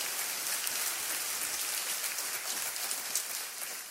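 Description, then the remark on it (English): A church audience claps steadily to thank God, a dense wash of many hands with no single claps standing out and no voices, holding an even level for the full four seconds. “Let's just clap our hands at all of our locations and thank God for the great things he's doing.”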